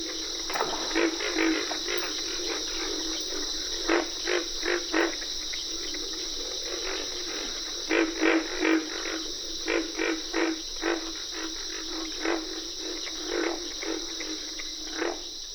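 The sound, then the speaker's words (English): A chorus of pig frogs at a wet grassy prairie in the Okefenokee National Wildlife Refuge, Georgia, gives off repeated low, pig-like grunts in uneven bursts, over a steady high drone of crickets, with carpenter frogs mixed in. Moderately loud, with no voices. “Pig frogs are the featured crooners at a wet grassy prairie in the Okefenokee National Wildlife Refuge in Georgia.”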